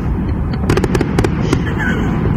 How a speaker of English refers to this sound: 4th of July. Safety and fireworks. Fireworks.